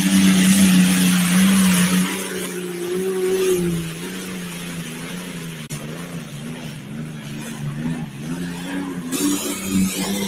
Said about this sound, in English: Oh, yeah, 1940s vintage Allison V12 aircraft engine taking it up the hill there.